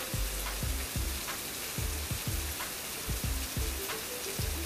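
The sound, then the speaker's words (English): Steady rain falls outside a porch, hissing across the whole clip, with irregular low plunks of heavy drops hitting a surface. No one speaks; the downpour is fairly constant. “Y'all enjoy this weather. Go sit outside and soak in some of this rain and wash away some of this pain.”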